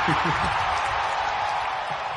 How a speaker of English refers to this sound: Crowd noise.